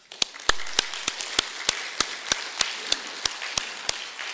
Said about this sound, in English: We do it through clapping for each other. And we do it for, we just clap. Let's clap for our staff all again.